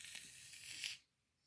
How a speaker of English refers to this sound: Hold on. I'm trying to do a whip it out of this whipped cream. It worked a little bit. It worked a little bit.